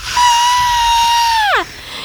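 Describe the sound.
A person demonstrates a single sustained, piercing high-pitched scream lasting over a second, steady in pitch before sliding sharply downward at the end; loud, with no talking.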